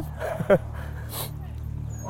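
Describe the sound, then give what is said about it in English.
About six or seven dogs swimming in one pool give a few short, high-pitched yips and whimpers, one sharper yelp standing out, over a steady low background hum, fairly quiet. “There's about 6 or 7 dogs swimming in one pool”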